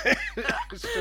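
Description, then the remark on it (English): A man's rapid coughing fit right up close to the microphone, four or five loud, harsh bursts packed into a single second with no pause between them. “It's just coughing now.”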